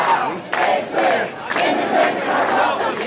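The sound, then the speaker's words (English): A large crowd of thousands of protesters chants angrily at Philadelphia International Airport's McNamara terminal, in loud, rhythmic bursts, many voices shouting together in a repeating cadence with brief dips between phrases. “Thousands of demonstrators descended on Philadelphia International Airport today. Filling five different McNamara terminal locations with full-throated anger.”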